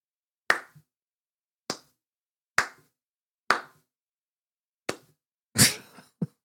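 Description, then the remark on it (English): Slow, deliberate clapping with about seven sharp, crisp claps spaced roughly a second apart. The rhythm is slightly uneven, and one clap near the end lands louder and fuller than the rest. No voices. “just the slowest of claps.”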